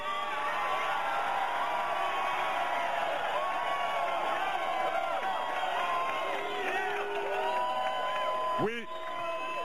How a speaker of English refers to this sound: the main thing is you were cheering then, we're cheering now